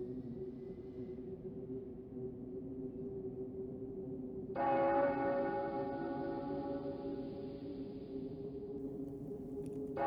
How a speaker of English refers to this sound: Have we not heard the chimes?